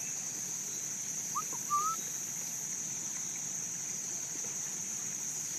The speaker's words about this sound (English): It's pulling my attention. Is that a whippoorwill? Whippoorwill?